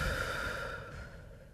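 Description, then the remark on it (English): A single long, deep breath out from the stomach during a breathing exercise, breathy and airy, gradually fading over a second and a half, heard alone with no talking. “Air in, deep from stomach, and then out.”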